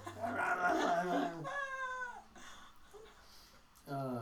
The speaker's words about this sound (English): The pack of wild dogs are on fire. Still trying to eat the man.